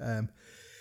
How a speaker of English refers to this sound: Pardon me, or just a sneeze